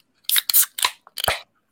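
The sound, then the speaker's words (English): Beer cans cracked open in quick succession: four sharp metallic pops, each with a brief hissing fizz, and no voices. “Cracking beers.”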